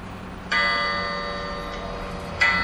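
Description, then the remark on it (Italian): A clock, a different one from a cuckoo clock, ticks twice, roughly two seconds apart, each beat a resonant metallic strike that rings on and slowly fades, clear with no one talking; played back by pressing a Play button. “Questo è un altro orologio diverso.”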